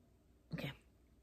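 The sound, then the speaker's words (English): A single short meow from the admissions cat, fairly soft, lasting about a third of a second, with no one talking. “admissions cat is here, but I think he's going to snub me.”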